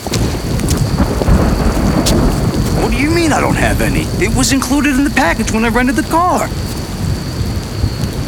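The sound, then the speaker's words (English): Heavy rain pours down steadily throughout in the woods, a dense, loud hiss filling the whole scene, while a man talks over it as he leans over the hood of a rented car that won't start. “Look, it's pouring down rain, and I'm leaning over a hood in the middle of the friggin' woods.”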